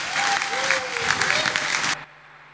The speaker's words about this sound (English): Should we just give these guys a welcome round of applause? Yeah.